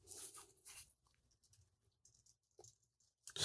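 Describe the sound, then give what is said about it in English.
Soft, irregular clicking and tapping of keys struck on a keyboard as someone types in notes, in scattered little bursts with a louder clatter at the end. Nobody speaks. “What are you typing over there?”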